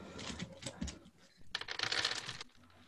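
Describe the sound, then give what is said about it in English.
Dice clatter and rattle across a hard tabletop, with a few light knocks first and then a denser rolling burst before settling, the dice ending up under a computer. “Oh, no, my dice went under my computer.”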